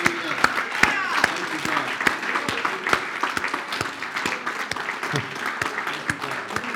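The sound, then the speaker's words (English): An audience at a church service claps their hands in steady applause as a hand-clap offering to the Lord, with sharp, evenly spaced louder claps cutting through a dense wash of clapping and a murmur of voices underneath. “Let's give the Lord a hand clap offering as we finish.”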